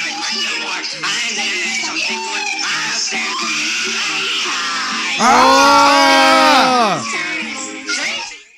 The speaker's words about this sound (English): That's screaming in the background? Yeah. Yeah, dude, you can audibly hear a kid. You can audibly hear a kid yelling, "I'm just a kid. I'm just a kid."